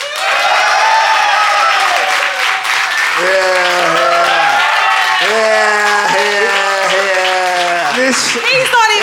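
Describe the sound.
Loud, sustained applause from a live audience fills the whole stretch, with voices cheering and whooping over the steady clapping.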